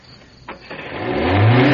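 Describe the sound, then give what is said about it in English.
A car engine, its clutch housing smashed, cranks and catches, then revs up, its low rumble rising in pitch and growing steadily louder over a couple of seconds, as someone tries to run it and cannot get it into gear. “I can't get it into gear.”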